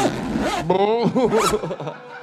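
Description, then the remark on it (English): A voice imitates a zipper being pulled down, a quick buzzy, rasping vocal slide lasting about two seconds, fairly loud with no other sounds around it. “Sure, I make sounds of zippers coming down, because that's what I do.”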